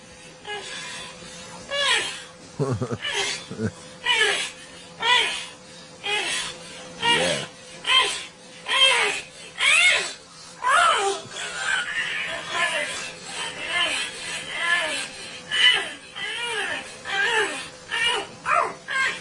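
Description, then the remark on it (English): A parrot left by its owners in their bedroom chatters and squawks nonstop, a busy string of wavering, whiny calls and chirps that swoop up and down in pitch, fairly loud, some sounding almost like mimicked speech. “This is the noises this bird makes.”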